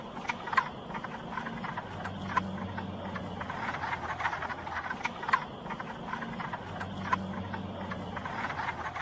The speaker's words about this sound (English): The wood frog.